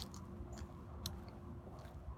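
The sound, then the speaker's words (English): Dry brown leaves crunch underfoot in a few irregular steps on a walk outdoors, each a brittle crackling burst against a quiet, low background rumble. No one speaks. “Water gurgling, brown leaves crunching beneath my steps, green leaves rustling overhead.”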